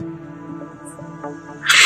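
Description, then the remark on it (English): A bird screams, with a sustained harmonic cry that swells into a loud, harsh, hissing screech at the very end. No one speaks. “Fucking bird. Hawkward. Scream.”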